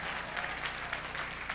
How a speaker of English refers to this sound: All those who are clapping, heaven will remember you.